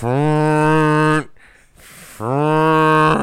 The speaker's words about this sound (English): That sounds like a sad elephant. Yeah, it does sound like a sad elephant. But again, this is like the fourth time we've tried to record this intro for the show. I'm all purged out. Yeah. So your horn is sounding kind of lackluster there.